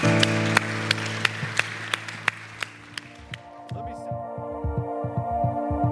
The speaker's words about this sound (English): Can we give these three individuals that raised their hand a huge round of applause? Yeah, yeah, yeah.